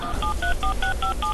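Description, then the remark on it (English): A rapid sequence of touch-tone beeps as a phone number is dialed, about seven short dual-pitched tones in a quick steady rhythm, clear over a low background hum. “Oh, I hear dial tones.”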